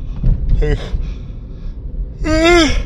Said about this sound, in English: Oh boy. Wow. Powerful, powerful yawns. My eyes are totally heavy.